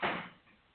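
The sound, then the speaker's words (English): A single door swings shut with a soft thud, its sound fading quickly; moderately loud, with no talking. “Can you close the door, please?”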